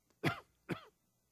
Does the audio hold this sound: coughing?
yes